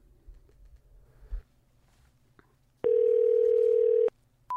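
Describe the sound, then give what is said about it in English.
A steady, loud telephone dial tone, heard before a call to a bus station in Connecticut, holds one pitch for just over a second, then cuts off abruptly after some faint clicks and rustling beforehand. No one talks. “Okay, let's call a bus station in Connecticut.”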